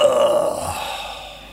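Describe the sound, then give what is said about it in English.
A strained, throaty grunt with a short tonal push at the start, like a stifled burp that never comes, fading into a breathy exhale over about a second and a half. “I was going to try and make a tiny little burp, but it didn't happen, and it just sounded like I was birthing something.”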